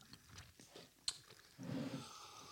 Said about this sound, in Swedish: Nu tuggar jag så att det låter, hör jag.